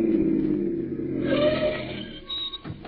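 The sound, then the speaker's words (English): A car engine rumbles steadily and grows louder as it approaches along a road, its pitch shifting briefly, then it slows with a faint high squeal as it stops. “Listen, here comes another car.”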